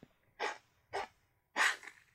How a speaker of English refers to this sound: Dogs are always trying to cough some shit up.